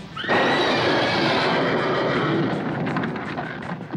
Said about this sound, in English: In a stable, trying to calm the horses spooked by the name... Frau Blücher.